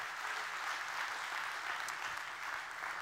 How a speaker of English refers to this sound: Let's give the Lord a great big hand clap today to honor him.